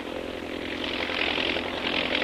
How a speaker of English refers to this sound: An army plane in advance of the mechanized column sights something and reports by radio to the column below.